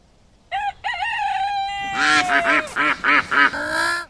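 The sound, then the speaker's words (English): A duck quacks loudly: a few short calls, a drawn-out falling squawk, then a rapid run of harsh, nasal quacks that cuts off abruptly. “I don't go over to the duck pond and knock the bread out of your bill, do I?”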